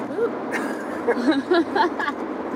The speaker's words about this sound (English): We're recording these sessions actually live in cars, actually going to festivals and events, so you will hear road noise